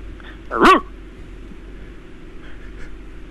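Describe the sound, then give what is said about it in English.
A single short dog bark rings out, loud and sharp, followed by quiet background noise with faint rustling for the rest of the moment. “Can you do a proper bark?”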